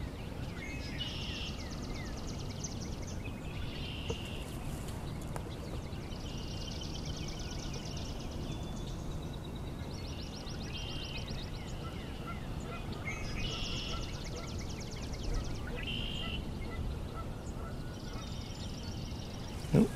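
A large bird, one of three swans or cranes flying by, calls as it passes, giving about five bursts of harsh, nasal, honking cries at a steady pace over a constant low rumbling background. No one speaks.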